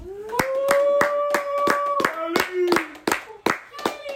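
A round of applause: sharp, steady claps at about three per second for four seconds, with a sustained wordless vocal tone, like cheering or humming, carried over the clapping.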